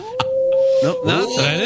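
A wolf howls in a long, drawn-out note that then breaks into wavering, sliding tones, loud with no talking over it.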